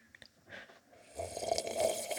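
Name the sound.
slurping a drink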